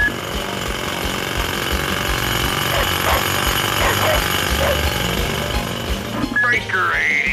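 A jackhammer pounds away continuously for the whole stretch, a loud, dense, rattling clatter with no pauses, joined by faint warbling tones partway through and a brief squeal near the end.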